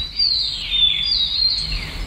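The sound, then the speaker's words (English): A steady chorus of birds sings outdoors among trees in nature, high chirps and thin whistled trills overlapping continuously, with a faint low rumble of open air underneath and no voices. “It would be apt for me, as part of this tribute, as part of this conversational tribute with you, that I be walking through the same path amongst trees and birds in nature as we speak.”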